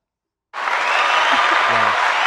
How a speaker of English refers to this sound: That sounded like some bullshit, so I need some claps.